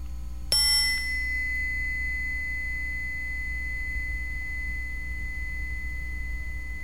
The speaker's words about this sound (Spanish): Esta que escuchamos ahí es la famosa campana energética. Y se sigue escuchando, es larga, como no sé si es la onda, cómo se dirá, pero se siente como que sigue el sonido un montón. Esa onda elástica que habíamos hablado, ahí está todavía, ¿verdad?